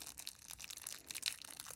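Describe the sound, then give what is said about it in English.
A Violet Crumble honeycomb chocolate bar being unwrapped and broken, a quiet run of dense crinkling and crisp crunching crackles with no one talking. “I think we need to try this violet crumble. Yeah, it's the way that shatters.”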